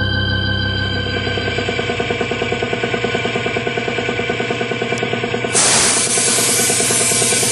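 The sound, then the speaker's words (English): A paint sprayer's motor chugs in a fast, steady pulse, then a loud, broad hiss of spraying bursts in and holds for the last couple of seconds. No one speaks. “Give it another shot of paint over here”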